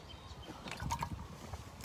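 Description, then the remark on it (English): A quiet sip of water, with soft liquid slurping and a brief gurgle in the middle of the moment, and no talking. “I'm going to get a shot of water here.”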